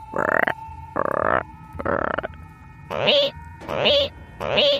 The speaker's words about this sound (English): Those are the sounds the frogs and toads make when they sing at night.